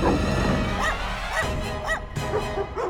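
Several small dogs, among them a Pekingese, bark and yip in quick, overlapping bursts, fairly loud, with snappy high-pitched barks repeating roughly every half second over a busy, agitated background, as they charge, biting and snapping at the air.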